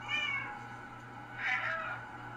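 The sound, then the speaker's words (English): Two drawn-out cat meows from the video game Stray, made by pressing the meow button over and over, a couple of seconds apart and fairly clear, over a steady low electrical hum with no one talking. “But here's a video of me playing Stray and me hitting the meow button over and over again.”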